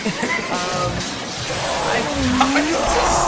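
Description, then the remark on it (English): A car crash sound effect: skidding tires squeal and waver over a dense, harsh roar that fills several seconds, loud, with no speech. “This is a serious car crash.”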